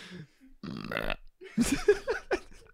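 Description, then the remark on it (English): A voice imitates a croaking noise deep in the throat: a rough, buzzy, belch-like rasp, then a second burst of gravelly croaks that rise and fall in pitch, moderately loud. “… made a croaking sound in her throat. Now, what does that sound like?”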